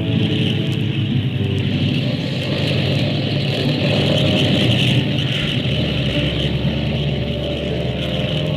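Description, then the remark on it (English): Airplane engines roar steadily at full power as the plane readies for takeoff, a loud, continuous droning rumble with a hiss on top; the low throb deepens and shifts a little over halfway through. No voices. “Starboard engine 2. Airplane ready. Skyliner Flight 35 ready. Take off when ready, Flight 35.”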